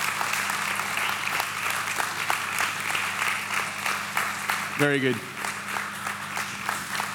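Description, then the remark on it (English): Steady, dense audience applause as three people come up onto a stage, a continuous wash of many hands clapping at even loudness, with a brief spoken comment cutting in near the end. “Let's give them another round of applause. Clap until they're on the stage.”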